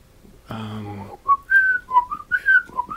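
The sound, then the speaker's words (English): A brief low hum or voiced sound comes first, then a clear whistle into a microphone plays Saria's Song from The Legend of Zelda: Ocarina of Time, short rising and falling notes in a bouncy rhythm. “Can you whistle into one of these mics?”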